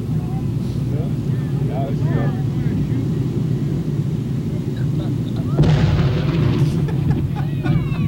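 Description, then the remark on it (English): Over a steady low rumble, a muffled dynamite blast bursts out partway through as a whale carcass on a beach is blown up, followed by a sustained wash of crackling noise that lingers to the end. “The sand dunes there were covered with spectators and landlubber newsmen, shortly to become land blubber newsmen, for the blast blasted blubber beyond all believable bounds.”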